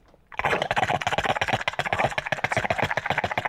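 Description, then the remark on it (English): A voice imitates a bong hit: a loud, rapid bubbling gurgle that starts abruptly and rattles on steadily for about three seconds, with no talking over it. “Would you like to hear my impression of a bong hit?”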